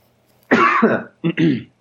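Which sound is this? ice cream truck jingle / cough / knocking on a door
cough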